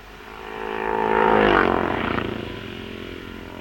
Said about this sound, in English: Now number 15, David Gregory. Number 15, D. Gregory from St. Albans. Riding a Norton, went through the start, holding up his left hand, indicating to following riders and to his pit people